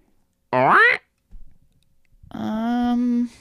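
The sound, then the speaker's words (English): A voice imitates a squeaky, duck-like clown honk: a short rising squeal, a brief pause with a faint rustle, then a longer, lower, buzzy sustained quack. “That's more like a squeaky door. That's like a dog toy.”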